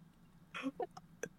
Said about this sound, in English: has to clear his throat like five times and then he finally looks up.